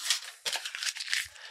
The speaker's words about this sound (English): And when you feel ready, we're going to crumple up our piece of paper.